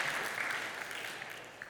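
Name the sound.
round of applause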